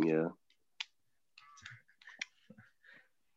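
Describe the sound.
Notes shuffle and rustle in a series of short, crisp, crinkly bursts, following a brief voiced sound at the start and a single sharp click.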